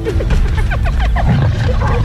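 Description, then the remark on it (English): A hungry hyena clan of over 20 calling together: many overlapping whooping, sliding cries over a dense bed of low growling and rumbling, loud and continuous throughout. “And blundered straight into the middle of the hyena clan. Listen, listen. They're hungry. Listen to their noise.”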